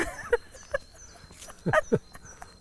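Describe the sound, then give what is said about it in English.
A dog gives a few short, sharp barks, with a quick pair of louder yelps near the end against a quiet background. “I love your dog too.”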